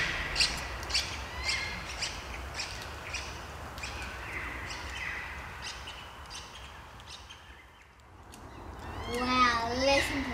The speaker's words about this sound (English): Did you hear that? I was whistling and they called back. It's the yellow-tailed black cockatoo. Blackbird with round yellow circles on their cheeks. They're a large native Australian bird.